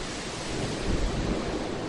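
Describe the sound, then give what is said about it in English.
Steady roar of ocean surf crashing ashore at Corpus Christi amid intermittent rain, with gusting wind buffeting the microphone; a broad, continuous wash that swells slightly in the middle, no voices present. “And you can see behind me, those waves are still crashing ashore.”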